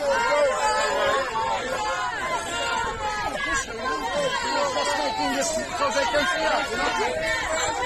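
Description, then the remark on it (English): A dense, agitated crowd of protesters shouts and screams over each other without pause, loud and chaotic, with scattered dull thumps of fists pounding on a car carrying Bill Gates and Boris buried in the roar. “So Bill Gates and Boris are in this car here and they're kind of going up to the car and yeah, pounding on it, screaming.”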